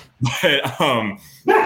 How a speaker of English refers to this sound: Sorry, my dog is going crazy.